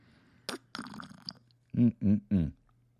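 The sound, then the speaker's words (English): A noisy slurp of hot green tea with lime and honey sipped from a coffee mug, followed by three short, throaty gulping sounds in quick succession. “On the Sword Swag, you're going to find our wonderful Sword of the Spirit podcast coffee mugs, which, as usual, I have mine right here. And let's slurp for you.”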